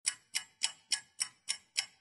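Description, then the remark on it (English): A pendulum clock ticks steadily, seven crisp even ticks at a brisk, regular pace of about three per second, with no voices present. “As the pendulum swings, the alarm clock rings, wake up soul.”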